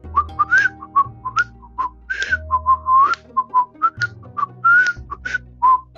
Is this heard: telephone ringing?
no